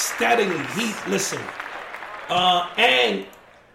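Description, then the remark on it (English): Steady clapping and applause for a rapper forms a hissy bed beneath voices that call out in loud, drawn-out bursts, the clapping continuing throughout without a clear beat. “So we want to clap that up because … steadily has been...”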